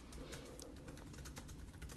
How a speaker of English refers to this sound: She's typing.